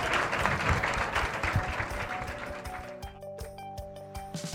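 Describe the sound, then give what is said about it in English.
An audience breaks into sustained applause, a dense wash of clapping that stays strong before tapering off slightly toward the end, with faint tonal hum underneath as it fades. “How about we'll a big round of applause for Nikki, Allie, and Allie?”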